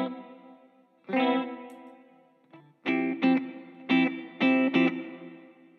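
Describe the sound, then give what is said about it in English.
Electric guitar chords played through a pedal board's chorus and reverb effects ring out with a shimmering, lush sound, a single strum followed by a rhythmic run of chopped chords, each tail washing out smoothly with no voices. “It's a tri-course sound there. And then, you know, it's got great reverb stuff.”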